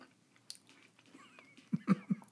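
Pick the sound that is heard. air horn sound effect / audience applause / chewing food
chewing food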